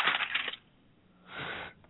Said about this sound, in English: What are you doing over there? I'm just writing my answer down.